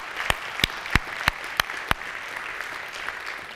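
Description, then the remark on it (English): An audience applauds in celebration of seven people who prayed to receive Jesus Christ, a dense, steady crackle of clapping, punctuated early on by about six louder, evenly spaced sharp claps, then continuing as even applause without voices. “So thank you for not golf clapping on that one.”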